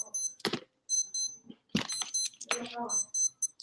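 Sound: alarm going off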